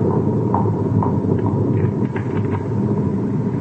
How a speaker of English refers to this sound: It's a thunderstorm, Skipper. I didn't know that it rained on Venus, Doctor. An atmospheric reaction to the new generators.